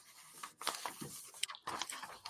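Paper notes rustle and crinkle in a series of irregular, crackly bursts, fairly quiet, with no voices.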